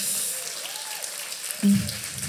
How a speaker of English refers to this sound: And so can we just give a round of applause one more time?